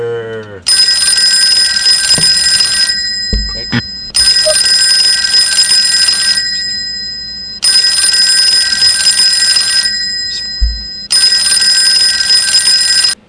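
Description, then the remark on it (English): An old-style telephone bell rings loudly, four long clattering bursts separated by short pauses, with no one talking over it. “That was the longest phone. I thought it was ever going to stop for a minute there.”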